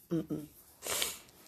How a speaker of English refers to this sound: Excuse me for sniffing. Oh, God, I'm sniffing in front of you.